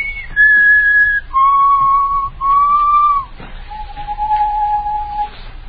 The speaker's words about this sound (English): Just keep whistling.